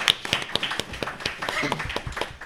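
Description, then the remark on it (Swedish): A small group claps for a quiz team scoring another point, a quick, irregular burst for a couple of seconds, the claps fairly crisp, with a faint voice briefly mixed in. “Ja, med andra ord, en applåd till Vispen och Rådspel att ta ännu ett poäng.”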